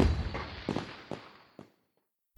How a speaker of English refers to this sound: On the 4th of July, the three friends march in a parade. That night, they watch a big fireworks show. Cinnamon loves the bright, sparkly bursts, but Tootie doesn't like all the loud noise.